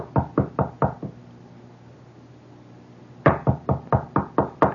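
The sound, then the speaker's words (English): Quiet, insistent knocking on a door: a quick run of about five raps, a pause of a couple of seconds, then a longer, steady burst of about seven more knocks. “And there is this kind of knock.”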